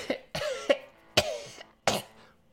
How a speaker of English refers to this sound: After a few minutes, you hear another cough.